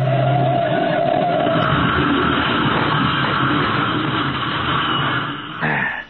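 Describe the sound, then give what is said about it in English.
A car engine roars and revs steadily for several seconds, then breaks off into a short, abrupt jolt as the car is deliberately driven into a curb to stage an accident. “now we're going to have the same kind of accident Anderson had. Okay, Patsy, here's the curb. Hold tight.”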